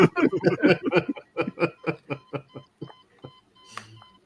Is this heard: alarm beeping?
yes